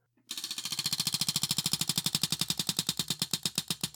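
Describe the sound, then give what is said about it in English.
A prize wheel spins with a rapid, steady stream of sharp ratcheting clicks, loud and unbroken for several seconds, the clicks spacing out slightly toward the end. No one speaks. “That's a very crunchy wheel.”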